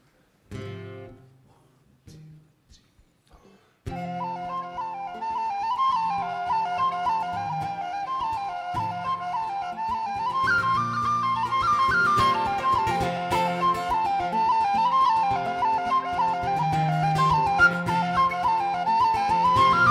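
A few sparse plucked notes open, then a full folk band enters with a bright, high whistle carrying a lilting, ornamented melody over steady strummed accompaniment, loud and sustained throughout.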